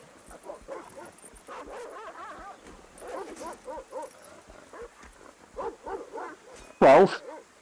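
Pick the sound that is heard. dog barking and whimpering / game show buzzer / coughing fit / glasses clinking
dog barking and whimpering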